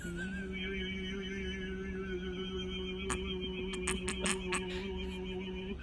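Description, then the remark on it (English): A sustained whistled tone wavers with a steady vibrato over a constant low hum, and a quick series of sharp clicks or taps breaks in during the second half. “When a whistler puts vibrato on a tone, it can come in different ways.”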